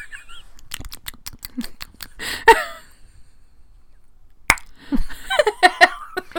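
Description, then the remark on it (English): A series of sharp, wet mouth clicks in ASMR style, some in quick bursts and others spaced apart, with brief soft mouth and breath noises between them and no spoken words. “Is that a thing? Clicking your mouth.”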